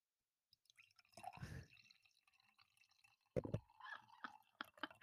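Sparkling wine is poured into a glass close by, with bursts of splashing, fizzing and bubbly trickling, then a second fuller pour followed by soft drips and popping bubbles.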